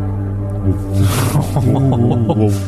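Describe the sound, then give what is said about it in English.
A voice imitates a crystal inside an apparatus still humming with magical energy: a steady, low droning hum with a breathy hiss partway through, then warbling, pulsing tones layered on top, fairly loud. “Looks like there's a crystal inside of the apparatus that is still humming with magical energy.”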